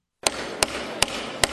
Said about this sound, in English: Tennessee House Speaker Cameron Sexton gaveling in the 2020 legislative session in Nashville today.